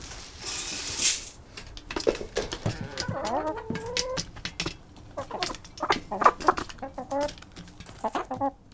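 A flock of six backyard hens clucking and squawking in busy, overlapping bursts at feeding time as the coop door is opened on a cold, gray winter morning of about 10 degrees, with a burst of rustling noise near the start and sharp pecking taps scattered throughout.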